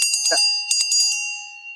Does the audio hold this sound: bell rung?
yes